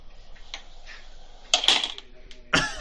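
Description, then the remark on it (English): A real door being shut by hand, heard as a pair of sharp, clattering clicks about a second apart, the latch catching after a brief rattle, over faint background noise. “I made that noise myself by shutting the actual door.”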